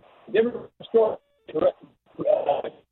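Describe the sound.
A caller's voice over a narrow-band phone line keeps breaking up, speech arriving in short garbled bursts separated by abrupt dropouts into silence, with a faint steady tone in one gap.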